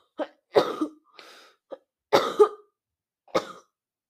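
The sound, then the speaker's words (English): A person coughs and clears their throat several times in short, irregular bursts, with brief pauses between them and no talking. “excuse me, sorry guys. I just have a cough.”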